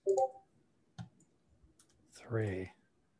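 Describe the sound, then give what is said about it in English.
Three combat dice are rolled in a game, a sharp clatter followed by a few faint ticks as they settle, brief. A voice is heard just before and after. “3 combat dice, 3 big bucks, no whammies.”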